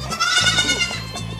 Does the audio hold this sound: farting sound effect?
no